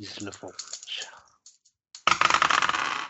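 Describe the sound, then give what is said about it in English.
A brief murmured voice, then a pause, then a loud, dense clatter of dice being rolled, rattling and tumbling for about a second. “You may make a French roll. All right. That means dice and stuff.”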